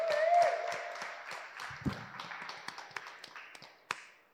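Audience applause: a dense burst of clapping from a crowd that gradually thins into scattered individual claps and fades out. Fairly soft overall, with no talking.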